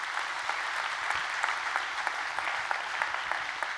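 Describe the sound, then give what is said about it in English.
A church audience at Journey applauds its serve team one morning, many hands clapping together in a dense, continuous patter with scattered sharper claps standing out, at moderate loudness and without any voices over it. “Can we give our serve team a good hand clap this morning?”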